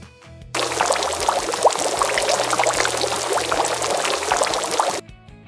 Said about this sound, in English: Boiling water.